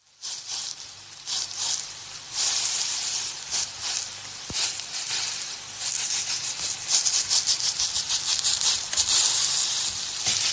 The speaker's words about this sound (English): by a spatula moving food around in a frying pan